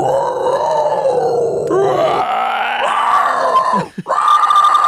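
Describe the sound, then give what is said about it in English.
A person does a long, loud, growling roar imitating a dinosaur, a strained guttural cry that rises and shifts in pitch, briefly catches for breath near the end, then bellows again. “Do your best dinosaur.”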